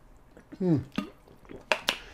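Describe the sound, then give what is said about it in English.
A quiet sip and gulp of water, followed by a couple of sharp little clinks as a glass is set back down on a hard surface. “So let me take a sip of water.”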